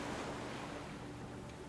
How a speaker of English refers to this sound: Alone on the beach, reflecting on the waves. Looking out to the horizon, feet in the sand.